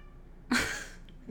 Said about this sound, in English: My cat is going crazy.